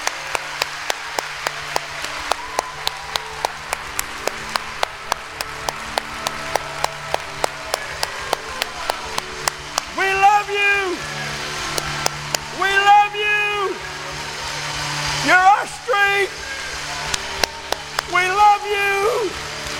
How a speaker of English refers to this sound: Just make it the most massive it's ever been. I want you, if you have to, spit on your hands. And I want you to put your hands together like hummingbird wings and clap to the Lord with all your might for about 20 seconds.